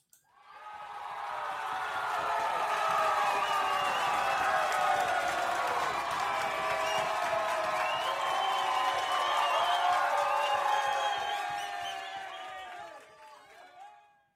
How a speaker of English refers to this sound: And they all obviously deserve a round of an applause. And also a big cheer for our mothers.